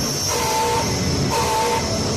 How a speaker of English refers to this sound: Should I sound that spoiler alarm that I use?